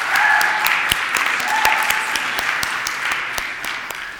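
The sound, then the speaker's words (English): An audience claps in a steady, dense wash of applause for about four seconds for an intern's baby picture put up on display, with a few sharper individual claps popping out above the crowd and some faint voices mixed in. “I'll clap for that.”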